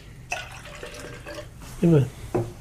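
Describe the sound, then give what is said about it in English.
Hoppy beer is poured out of a glass with a splashy trickle and gurgle that lasts about a second, followed by brief vocal sounds from someone. “Let's make sure I get all the hoppy deliciousness out of the glass.”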